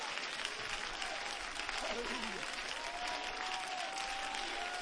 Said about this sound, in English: He is God in the flesh. Would you clap your hands under that God and just give him praise?